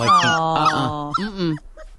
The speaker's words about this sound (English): The sounds dogs make are more compelling than cats, though. People who own cats or dogs found the sound of a whimpering dog just as distressing as a baby's cry.